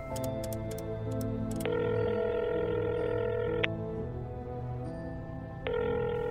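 A payphone line: several quick dialing key beeps at the start, then a steady, droning telephone tone that holds and shifts slightly a few times, clear with no voices.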